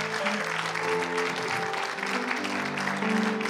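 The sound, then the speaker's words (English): A crowd claps steadily and loudly throughout, a dense wash of applause from a sizable audience, with faint cheering and murmuring voices mixed beneath the clapping. The applause honors companions for their support. “I want them to hear your praise, and for once, let's applaud them and lift them up for the companions and the support.”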